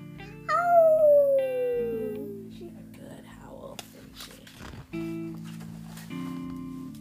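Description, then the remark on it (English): A voice imitates Maggie's howl, one drawn-out wail that slides steadily downward in pitch before fading, with steady musical tones continuing underneath. “Maggie used to howl too, right? Yeah. What did her howl sound like?”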